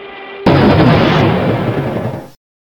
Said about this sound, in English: What was that explosion? Did your Tesla blow up again?